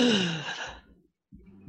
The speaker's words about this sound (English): I like …'s gasp, like, oh, that's gonna be cold.